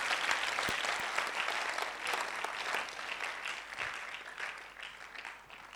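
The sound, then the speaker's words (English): A crowd claps steadily for several seconds as a clap offering to the Lord, a dense wash of overlapping hand claps at an even, fairly loud level with a few sharper individual claps standing out. “Oh, give the Lord a big clap offering.”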